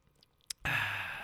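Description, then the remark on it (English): A faint, brief slurp of American lager beer, then a sharp click and a long, loud, breathy exhale of satisfaction. No talking. “Tip, sip, rate.”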